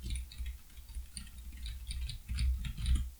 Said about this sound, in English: realized how I actually started typing there. Oops. I don't know if you can hear that.